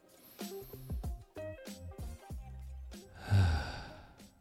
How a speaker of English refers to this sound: And on that note, let's go ahead and take our big, deep breath.